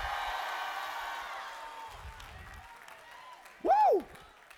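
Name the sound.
audience screaming and cheering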